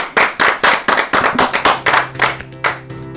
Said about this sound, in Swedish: Vi applåderar. Ja, det gör vi verkligen.